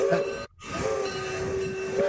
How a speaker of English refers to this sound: I think that sounds almost like a cog railway. It's hard to say.